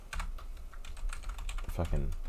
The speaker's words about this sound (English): I got it. You got it, good, because I'm typing the wrong thing. I hit the wrong button.